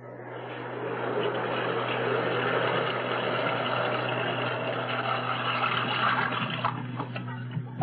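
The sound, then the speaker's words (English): Water pours steadily into a bathtub being filled for a hot bath, a continuous hissing rush that holds even for several seconds, with a low hum underneath and no voices. “I'm going to boil some water and fill the tub.”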